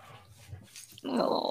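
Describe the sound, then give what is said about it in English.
A male dog rumbles with a low, soft growl, then abruptly breaks into a loud, high, strained whimper that continues to the end. Brief, with no talking. “Oh, he's so cute. Makes me want another dog so bad.”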